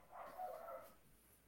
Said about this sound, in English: Sorry, people listening and the dogs, maybe the mic is picking that up, but again, I'm not going to edit this. So those are my dogs.